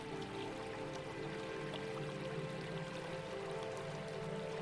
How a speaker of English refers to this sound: Release another leaf and another one, and watch them gracefully float downstream, carried away by the gentle ripples of the peaceful river.